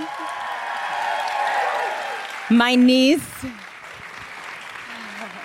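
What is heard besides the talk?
audience applause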